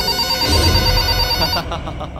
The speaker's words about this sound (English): right at that moment, doesn't my phone ring?